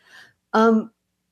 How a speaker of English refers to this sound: Now I'm getting the hiccups. Hang on. I'm going to have to hold my breath for 10 seconds.